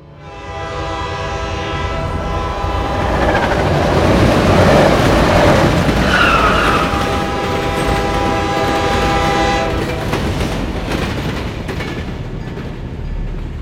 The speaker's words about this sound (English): I'm on a train to Syracuse.